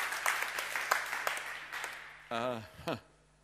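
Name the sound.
church audience clapping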